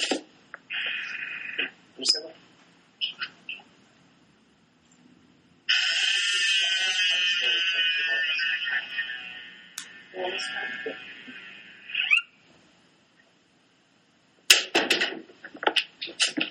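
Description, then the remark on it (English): Old doors creak open and shut in door Foley work: short squeaks and knocks, then a long, high, wavering hinge groan lasting several seconds, followed by a few more sharp clunks and rattles. “We got some really cool door Foley work right there. Yeah, old doors.”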